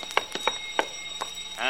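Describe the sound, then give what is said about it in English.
A burglar alarm wired to a safe at the office of the Wellington Loan Company on Rugby Street rings, with a sustained high electric tone under a few irregular metallic bell strikes. It sounds moderately loud, and no one speaks over it. “Burglar alarm wired to the safe.”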